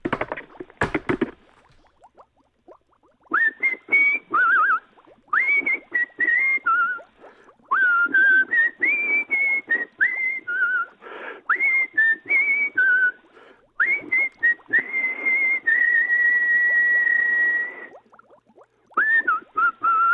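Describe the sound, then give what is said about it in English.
Someone whistles a bouncy tune, with quick melodic phrases and a long held note near the end, over a background of clattering taps and knocks. “Don't want to hear any more whistling …, okay?”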